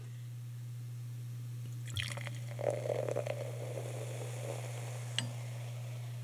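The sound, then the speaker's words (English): Marie Corton champagne, from producer Dominique Moreau, is poured into a glass over a steady low electrical hum: a few seconds of gurgling liquid with light fizzy crackle, ending in a small clink. Fairly quiet, no talking. “Do a little pour.”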